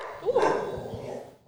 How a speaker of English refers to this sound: Ooh. Ooh, grumpy boy. Very grumpy boy. I don't know what he's barking at. Nothing's going on.